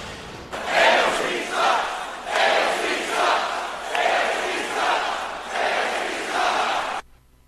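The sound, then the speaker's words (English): A large crowd at a campaign-style rally chants the initials of Alexandria Ocasio-Cortez in unison, a loud rhythmic two-part shout repeated about five times at a steady pace, roaring and echoing before cutting off abruptly. “Take a look at the crowd when Donald Trump Jr. appeared at a campaign-style rally for his dad earlier this week.”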